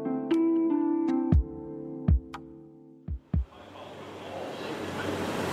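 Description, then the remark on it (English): Large charter bus engines from El Paso idle outside a huge stadium at the University of Texas in Austin, Texas, with a steady, low humming drone, punctuated by a few heavy thumps, before a broad rushing wash of outdoor noise swells up over the rumble. “Charter buses from El Paso idled their engines outside a huge stadium in Austin, Texas.”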